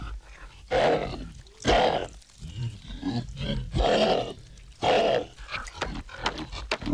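Loud, guttural human belches dubbed over a growling monster soundtrack at the end of the track, coming in several rough bursts about a second apart, with low rumbling roars filling the gaps between them.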